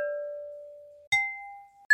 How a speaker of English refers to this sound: First, we have a church bell. And there it is ringing. And then I took three different glass bowls from the kitchen and I dinged them with a wooden mallet. And here are those sounds.